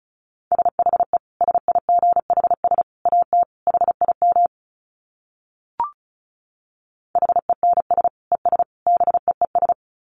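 Rapid Morse code at 35 wpm: a steady mid-pitched tone keyed in quick dits and dahs, sounding in two bursts separated by a pause with a single brief click.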